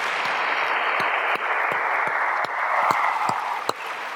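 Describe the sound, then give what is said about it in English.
An audience gives a round of applause for the men and women who leave everything behind to help fellow citizens during a hurricane. The clapping is a steady, dense wash, with a few sharper individual claps standing out; loud and sustained throughout, with no voices. “And I think I want to take this moment just really to give a big round of applause to all these men and women that leave everything behind to help fellow citizens.”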